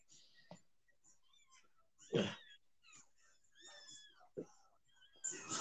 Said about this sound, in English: What is going on with these kitties? What are they doing now? They're meowing. Is she laying on them? They're butterballs and they think they're starving.